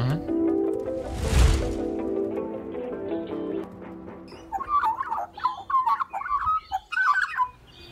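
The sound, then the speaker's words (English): A person imitates a dog, letting out a quick run of short, yappy barks, preceded by a sustained droning tone and a sharp smack. “And you went... Roof, roof. I went roof, roof and I bent right over.”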